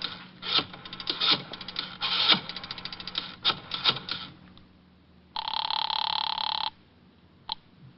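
Several seconds of clattering, fumbling handling noises give way to a single loud, buzzy telephone ring lasting over a second, followed by a sharp click as the receiver is picked up.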